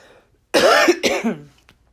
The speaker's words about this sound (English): I got a bit of cough.